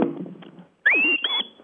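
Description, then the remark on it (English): A sharp two-part sheepdog whistle giving the two-tone 'go right' command: a high note sweeps upward and holds, then breaks into a second, slightly higher steady tone, all lasting just over half a second after a brief low murmur. “And what's another whistle then? The go right command.”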